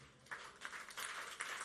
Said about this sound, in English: Please rise to your feet and give the Lord a big clap.